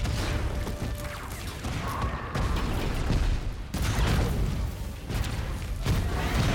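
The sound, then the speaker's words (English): Loud grenade explosion effects amid a sustained, rumbling barrage of blasts and gunfire, with sharp booming impacts breaking through a constant wash of noise and no voices. “Grenade.”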